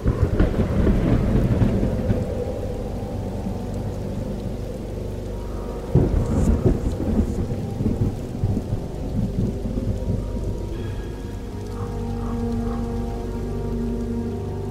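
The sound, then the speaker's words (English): A thunderstorm with steady, heavy rain hissing throughout, low rumbling thunder rolling underneath and a sharp crack of thunder partway through. No voices. “Somewhere along the 550-mile planned flight path, the plane disappeared in a rainstorm.”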